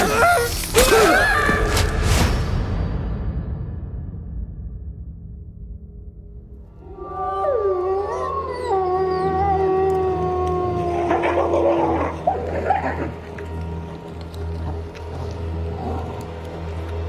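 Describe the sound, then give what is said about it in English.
Several wolves howl together, long wavering tones rising and overlapping after a brief noisy opening and a quiet stretch, the chorus sustained, with low rumbling underneath. “I thought wolves didn't feed on humans.”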